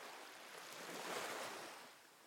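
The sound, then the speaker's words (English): Small, gentle ocean waves wash onto a sandy shore in a soft, continuous hiss of surf that swells slightly in the middle and then eases off, with no voices. “When you get to the shore where the ocean meets the sand, and you see little waves coming up and down, up and down.”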